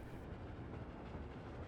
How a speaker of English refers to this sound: Now the train is moving past a town.